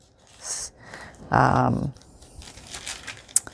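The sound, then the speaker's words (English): Crinkly rustling of stiff coffee-dyed tracing paper being handled, with a short crackle followed by a louder, longer crumple and then softer scattered rustles. “Tracing paper that I coffee dyed.”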